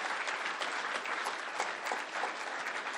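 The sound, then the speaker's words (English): An audience at a church service applauds steadily to honour people for their decision and discipline, a dense, even wash of many hands clapping at once, holding at a constant loud level throughout with no voices standing out. “And we're cheering you on.”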